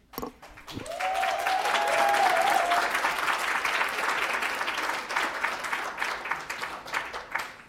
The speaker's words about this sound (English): I guess when I said we didn't want to take time from the next speaker, there was not a next speaker, so the applause was allowed by our rules.